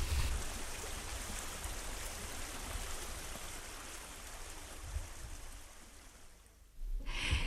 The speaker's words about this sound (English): But the river, as you can hear, is still flowing, so maybe in time it will go away.